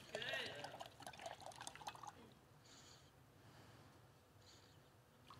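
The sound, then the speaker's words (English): Water from a gallon is poured into a jar in a steady splashing stream for about two seconds, then gives way to quiet with a couple of faint, brief trickles. “I want you to show you the difference between a jar that's full versus an empty one”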